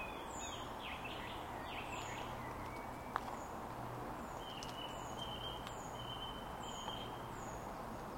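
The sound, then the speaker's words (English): Repeated high, short bird calls ring out at a steady pace in a small wooded nature reserve at about 68°F, over a constant low rumble of traffic way off in the distance, with no voices present. “The sound of the bird call and the slow and steady drone of traffic way off in the distance.”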